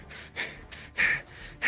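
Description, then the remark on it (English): A voice imitates the rapid hyperventilating of someone sitting on the ground, with four or five quick, breathy gasps in an uneven rhythm, loud, with no words spoken. “And he's kind of hyperventilating a little bit. He's sitting there just breathing in, breathing out.”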